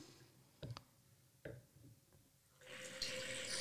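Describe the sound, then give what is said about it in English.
A few sharp clinks and taps, then liquid poured through a Venturi aerator: a steady hissing rush that swells louder and continues to the end. No one speaks. “I'm going to pour it through the Venturi now. Okay. So there might be some fun noise.”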